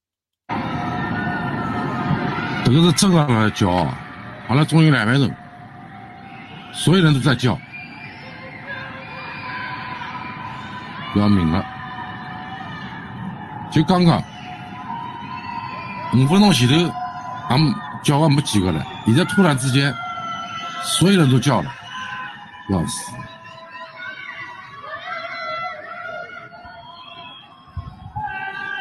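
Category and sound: crowd, crowd screaming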